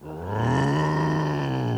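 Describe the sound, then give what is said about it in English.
A person imitates a tiger with a single sustained, throaty roar that swells quickly and holds steady for nearly two seconds, loud, with no other talk. “I'm a roaring tiger.”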